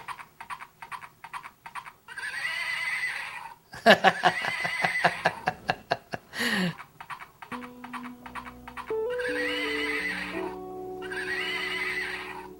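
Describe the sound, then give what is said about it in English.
A small toy horse gives a loud, electronic-sounding neigh after a run of clicking, clip-clop hoofbeats, then a tinny, simple melody plays with more bursts of sound over it. “hands him this little toy horse that one of their friends brought”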